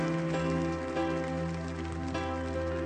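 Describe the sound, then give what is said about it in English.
A church audience at Family Worship Center claps steadily as a clap offering to the Lord, forming a dense, continuous patter like heavy rain, held at an even level for a few seconds while sustained musical tones hum underneath. “Now let's all give the Lord a clap offering.”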